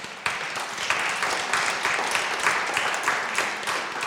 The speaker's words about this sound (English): Can we just give them a round of applause, please?